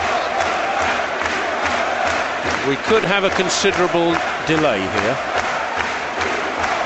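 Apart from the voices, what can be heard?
football stadium crowd noise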